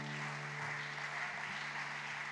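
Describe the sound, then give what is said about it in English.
An audience at Mount Hope Church gives God a clap of praise during a morning service, a dense, even wash of many hands that holds for the whole moment, with a sustained low musical tone droning underneath and no voices. “Can you just give God a clap of praise this morning?”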